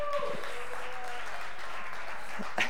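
An audience claps in a steady, dense burst of applause lasting a few seconds, a broad crackling wash of hand claps with a brief whistle-like tone near the start, welcoming the speaker's son to the stage.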